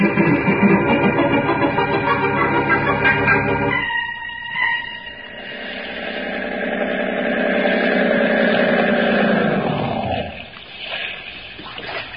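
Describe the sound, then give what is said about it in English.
A motorboat engine rumbles loudly and steadily, then revs up with a rising, droning whine that holds for several seconds before cutting off abruptly. No voices are heard. “I think we'll take a little boat ride.”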